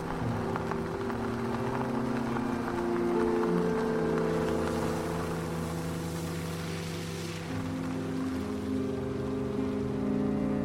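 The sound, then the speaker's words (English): A car drives down a mountain road toward Winthrop, with a steady, loud engine drone and road rumble that holds constant throughout, with no voices. “The man helped us put our bags in the trunk, and we all quickly climbed into his car. He drove down the mountain road.”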